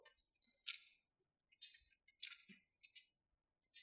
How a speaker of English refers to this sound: It's nice to hear those pages turning in your Bibles.